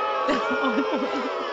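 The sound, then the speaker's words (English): A crowd booing sound effect: many voices boo loudly and steadily, blending into a dense, wavering jeer that fills the whole short moment without a break. “It's just people booing.”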